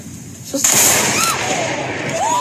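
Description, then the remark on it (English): A thunderstorm sound effect: after a quiet start, a sudden loud crack of thunder bursts in and keeps rolling as a broad, noisy roar, with faint wavering tones sliding through it. “Okay, you know what it's time for? What? A thunderstorm.”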